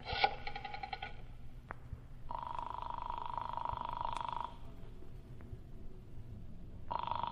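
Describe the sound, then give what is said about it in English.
A telephone rings in repeated buzzing bursts, each about two seconds long with pauses between them, as Britt Reed phones Councilman Marcy in a Green Hornet radio drama, heard over a low background hum with no one speaking. “First, I'm going to phone Councilman Marcy again.”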